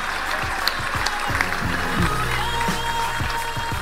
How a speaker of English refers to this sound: A round of applause for Brandon Stanton.